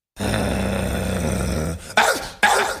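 A dog growl and bark sound effect: a low, steady growl for over a second, then two sharp, loud barks in quick succession, with no voices.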